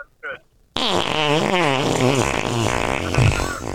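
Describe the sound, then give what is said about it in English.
Distorted, garbled voices over a bad phone connection, buzzing and warbling like fart noises. A brief blip comes first, then a loud, continuous, unintelligible stream lasts about three seconds. “You guys sound like fart noises already.”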